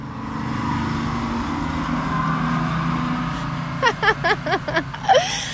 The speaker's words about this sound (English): Okay, it was like the tiniest little semi truck from like the 70s, and it was like kitchen lime green. I've never seen that vehicle before